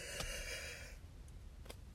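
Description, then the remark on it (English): A person lets out a single drawn-out yawn, breathy but fairly quiet, trailing off after about a second into faint breathing and a couple of small mouth sounds. “You know, it's just, oh my God, why am I yawning so much?”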